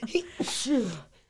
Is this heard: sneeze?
yes